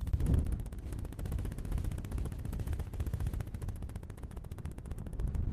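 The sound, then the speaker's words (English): A voice imitates a helicopter with a rapid, steady low chopping rumble of dense repeated pulses, held for several seconds at fairly even loudness, with no words spoken. “I think my helicopter impersonation might get you.”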